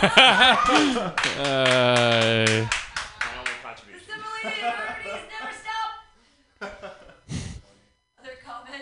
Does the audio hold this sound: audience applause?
yes